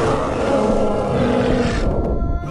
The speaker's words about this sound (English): It let out a howl for but a moment, then went limp, back into the ocean and sinking beyond her sight.